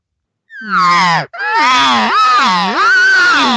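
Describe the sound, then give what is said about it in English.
A cow elk call, the cow calling a bull elk over: two loud, nasal, whining mews, the first short and sliding downward, the second longer and wavering up and down in pitch, with no talking over them. “And that's the cow telling the bull, come on over.”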